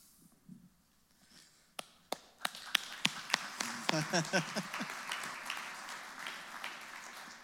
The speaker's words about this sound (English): That clap was to Jesus to say thank you for hearing and answering prayers.